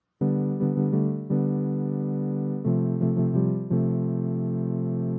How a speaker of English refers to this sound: So Noel, I'm sure, can give us examples of what it sounds like to listen to some tones played through a low-pass filter.